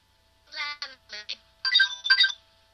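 A game show buzzer sound: a bright, buzzy electronic tone sounding in four quick bursts, then two longer, louder blasts, with no talking over it.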